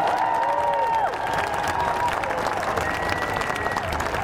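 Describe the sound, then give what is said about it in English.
A crowd applauds steadily and loudly, a dense wash of clapping that holds for several seconds, with cheers and a few rising and falling whistles over it. “So give yourselves a great round of applause.”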